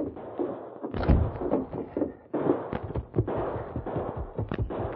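A rapid, chaotic volley of gunshots on Main Street, sharp cracks and heavier booms overlapping with echoes, loud, with a short pause before the shooting resumes.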